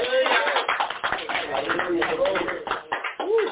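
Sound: audience clapping hands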